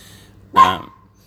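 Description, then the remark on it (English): A single short dog bark rings out, fairly loud, against a quiet background with a faint low hum and no talking. “But then you've also got, I got distracted by the dog barking there.”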